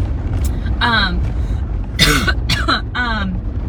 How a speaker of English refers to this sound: This gnarly cough, I want it to go away officially. It's driving me crazy.